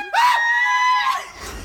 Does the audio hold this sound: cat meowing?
no